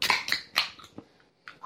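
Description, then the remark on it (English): A beer bottle cap pops open on a beautiful spring day: a few sharp, bright bursts in quick succession, followed by fainter clicks and a short airy hiss. No voices are heard. “Let's go ahead and pop a top on these.”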